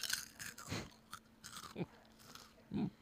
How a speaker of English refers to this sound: Start eating. There you go. Let's hear some crunching.